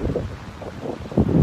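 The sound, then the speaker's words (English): Strong, cold wind buffets the microphone in low, rumbling gusts on a morning at Coogee Beach, with a constant roar that swells louder near the end. No voices, just blustery air on an open shore. “I brought my paper to do a photo as well, but way too windy, way too coldy.”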